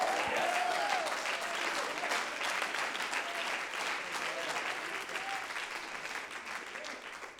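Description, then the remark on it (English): A church audience claps hands in sustained applause during a sermon, celebrating God's greatness, a dense steady patter of many claps at even loudness with faint scattered voices mixed in, easing slightly toward the end. “We need to clap our hands and celebrate God's greatness.”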